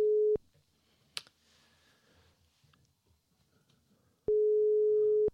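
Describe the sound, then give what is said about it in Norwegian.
A steady telephone ringback tone sounds loud and clear as a call is placed to a guest, stops, then after a few seconds of quiet clicks and faint background noise, sounds again. “Skal vi se om han tar telefonen. Jeg ringer egentlig litt for tidlig, men jeg håper at det går.”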